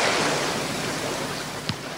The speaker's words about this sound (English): But as you listen to the waves, let a memory of water arise and see what its gift is to you now from God.